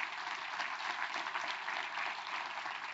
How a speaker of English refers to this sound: He was not able to be with us today, but I did want us to represent or recognize Corey as well. So y'all give Corey a round of applause.